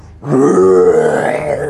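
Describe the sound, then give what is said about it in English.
A person voices a dragon's roar as the dragon's wings fly up: a single loud, sustained, growling bellow lasting over a second, low and gravelly with a slight rise in strain toward the end. “The dragon. Its wings fly up. And it roars.”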